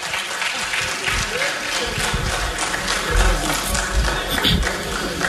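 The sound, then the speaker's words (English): A group of meeting members applauding steadily after a motion is carried by 64 votes, a dense, continuous patter of many hands clapping at fairly even loudness with a slight swell midway, and a few voices faintly mixed in underneath. “Clap for that.”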